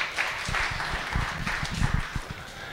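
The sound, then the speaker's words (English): A crowd applauds the team at the back with steady, dense clapping that holds an even level throughout, a continuous wash of many hands with a few sharper claps standing out. “Give our guys at the back there a big round of applause.”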